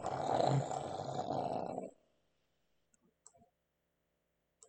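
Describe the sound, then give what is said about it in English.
A bear's deep, rasping snore rumbles loudly for about two seconds, then cuts off into near silence broken only by a few faint clicks. “I look around. Snoring bear.”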